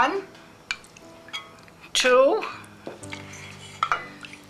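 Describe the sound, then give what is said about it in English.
A tablespoon clinks and scrapes against a bowl while about three tablespoons of liquid blintzel batter are scooped, a few light taps spread across the moment, moderately loud, with a brief smear of voice partway through. “And I use about 3 tablespoons.”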